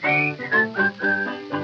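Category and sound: human body sound, human whistling a tune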